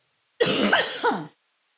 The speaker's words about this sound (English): This cough, I'm telling you.